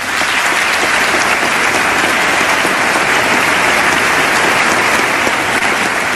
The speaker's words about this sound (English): The rest is just clapping. Yeah, I know it's just clapping. I just wanted to make sure to get the standing ovation in there.